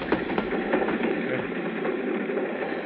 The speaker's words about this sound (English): The train had picked up speed, lurching us from side to side.